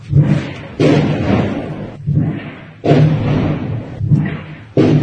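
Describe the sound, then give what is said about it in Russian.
Artillery shelling in Donetsk, heard by people sheltering in a basement: a rapid series of heavy, booming explosions, about six blasts in five seconds, each with a sharp onset and a rumbling, low-heavy tail. “Hiding in Donetsk during artillery attacks”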